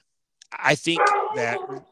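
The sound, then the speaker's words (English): A dog gives a drawn-out, bark-like yowl lasting over a second, fairly loud, with a wavering pitch, after a moment of silence. “I think that your dog would agree with me that Rashad Penny is very droppable.”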